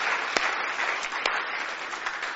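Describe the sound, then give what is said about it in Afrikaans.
An audience applauds for the Lord with steady, dense clapping that fills the whole stretch, a few sharper claps standing out now and then; no voices come through. “Kom ons klap vir die Here, kom gee hom al die eer, dankie Here.”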